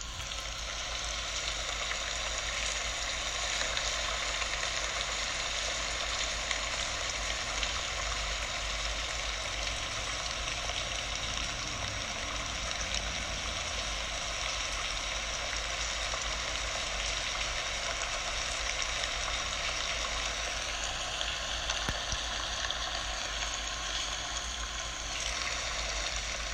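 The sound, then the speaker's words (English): Steady rain patters on a roof, a dense, even hiss full of fine crackling drops that holds at the same level for the whole stretch, with no voices or other sounds. “The raindrops on the roof soothe you.”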